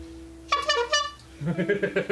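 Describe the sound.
A rapid burst of squeaky, bright clown-horn honks sounds fairly loud, then gives way to a lower voice talking.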